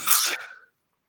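A single sharp sneeze, fairly loud, bursting out with a breathy hiss and fading within about half a second into silence.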